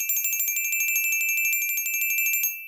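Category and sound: signal or alarm, bells ringing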